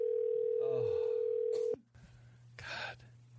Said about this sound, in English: All right, here we go. I'm going to dial it.